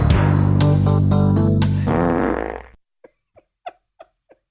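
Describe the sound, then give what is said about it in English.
A long, loud, buzzing fart sound, played as a fart joke on the Bernstein and Holmes show, sputters and shifts pitch for a few seconds, then trails off into five short, quieter little toots spaced apart, with no talking. “It wouldn't be the Bernstein and Holmes show without fart jokes.”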